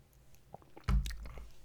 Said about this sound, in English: I'm going to have another sip of coffee here.